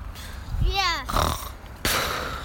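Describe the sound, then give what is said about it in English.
A child's voice imitates their father's snoring from the night before: a rough, buzzing vocal snort with a wavering pitch, then a raspy breathy exhale, followed by a steady hiss. “Do your impression of Daddy last night. Oh, my snoring?”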